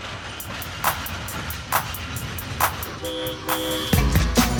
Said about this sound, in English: do I hear the train pulling into the station?